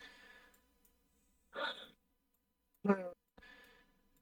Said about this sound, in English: Hey, stop that. What? I'm yawning. Stop what? I'm yawning.